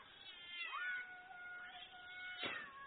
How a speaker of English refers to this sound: Damn cat.